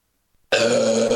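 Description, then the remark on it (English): A loud burp erupts after a brief silence, a single sustained guttural belch with a rough, droning tone lasting under a second. “We will never listen to that burp again and not be like thinking that.”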